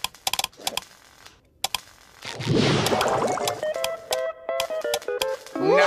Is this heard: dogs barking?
no